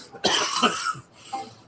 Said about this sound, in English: Sorry about that fucking cough.